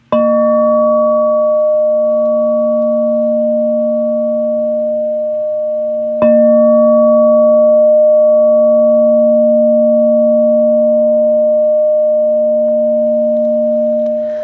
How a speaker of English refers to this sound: There's another way to play the bowl, and that's what I call chiming it or striking it.